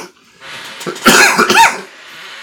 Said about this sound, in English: Can you squeak while you're coughing, please?